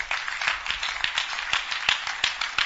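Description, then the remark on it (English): A crowd claps for Jesus together in dense, overlapping applause, with sharper individual claps popping out in a loose, steady rhythm. The sound is moderately loud and continuous, with no voices. “Clap for Jesus.”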